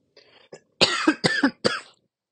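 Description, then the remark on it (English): A short fit of three harsh coughs in quick succession, preceded by a faint throat rasp, with no talking. “I'm coughing at you guys for your ears.”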